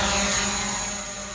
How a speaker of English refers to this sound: Sorry, I couldn't hear you over the sound of my drone flying. I'll turn it off